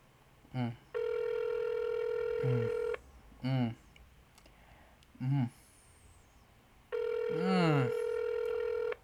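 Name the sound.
phone call ringing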